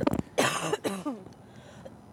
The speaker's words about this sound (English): Well, I can't really help it. You can suppress a cough.